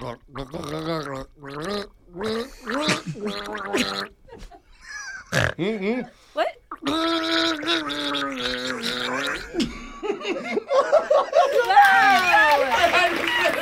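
A man gargles water while trying to sing a melody, his wavering, bubbly notes rising and breaking, ending in a loud, rough sputtering gurgle.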